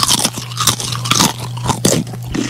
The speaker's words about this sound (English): Oh, there's that sound. I hate that. Already, yes, people eating is the worst sound in the world. I agree, but like crunching on a chip's a different kind of sound. Like, I don't like slobbery sound. You mean it's louder? but not as obnoxious.